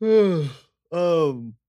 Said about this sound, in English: I'm glad you yawned right before that.